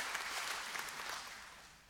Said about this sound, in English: Jesus is alive. We don't, that's worth clapping for, right? Absolutely. He's alive.